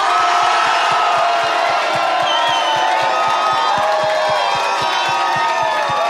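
An audience screams and shouts in loud, sustained support for a contestant to be named first finalist, the roar filling the space for several seconds while steady rhythmic thumps, like stomping, pulse underneath.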